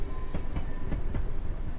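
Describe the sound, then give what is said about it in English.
A train rolls steadily along the tracks, its wheels clacking in a regular rhythm of sharp beats over a constant low rumble, fairly loud, with no voices. “I hear that Talking Lead jackwagon train.”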